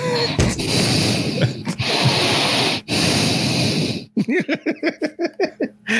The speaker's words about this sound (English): Now you're breathing